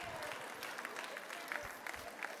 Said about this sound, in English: Wow, one of the few jokes I ever get claps on.